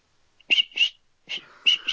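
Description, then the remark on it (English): A Fox 40 water polo whistle gives a run of short, shrill blasts: two quick toots, a pause, then three more, loud and piercing with no voices. “That's a Fox 40, right? That's a Fox 40 water polo whistle.”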